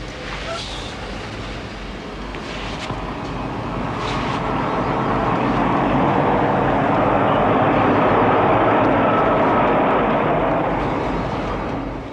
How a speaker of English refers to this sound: L train goes by.